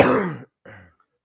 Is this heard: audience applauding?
no